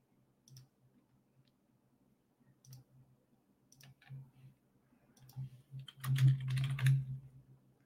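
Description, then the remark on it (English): Typing on a computer keyboard: scattered single keystrokes at first, then a quicker, louder flurry of clacks near the end, with no one talking. “I'm typing that wrong.”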